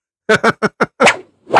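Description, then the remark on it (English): A voice imitates whip cracks: four quick, sharp bursts in a rapid rhythm, then two longer, hissing cracks, all fairly loud with no other sound behind them. “Yeah, because she knows how to use the whip.”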